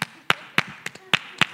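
A preacher in the middle of a sermon claps for themselves six times in a steady, fairly quick rhythm, each clap sharp and crisp with faint background murmur between them.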